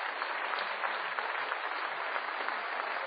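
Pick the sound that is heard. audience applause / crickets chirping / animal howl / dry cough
audience applause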